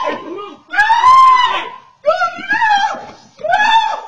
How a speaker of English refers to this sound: I mean, he is screaming like a stereotype.